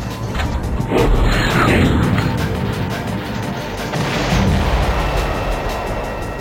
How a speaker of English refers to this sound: They have no idea their insurgent activities have been spotted, and no idea the UAV operator thousands of miles away is about to fire a missile at them.